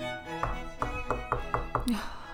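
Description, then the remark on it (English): Six sharp knocks on an office door, the first slightly apart and the rest in a quick, even run, followed by a brief rising scrape. No one speaks. “At first, she didn't hear it because she was in the zone from her meditation, and she didn't react until the second round of knocking.”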